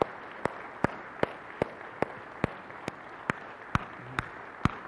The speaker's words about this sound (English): That's awesome. All right, you can be seated, just like first service. No one wanted to be the first one to stop applauding. They're looking around like, I don't want to be, okay.